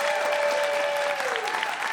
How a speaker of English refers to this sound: Big round of applause for them as well.